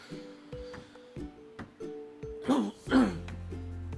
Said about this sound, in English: Here comes the allergy cough again.